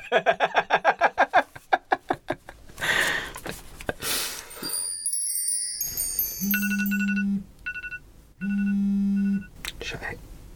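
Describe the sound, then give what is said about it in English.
A mobile phone ringtone plays an electronic melody of high, bright tones, then repeats a beeping phrase twice over a low hum, loud, following some rhythmic vocal noises at the start. “Did you just scold your phone as if it was your dog?”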